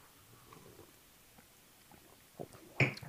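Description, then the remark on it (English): After a near-silent stretch, a short wet sound and then a louder slurping sip of a hot Irish coffee topped with shaken cream near the end. “Okay, let's sip.”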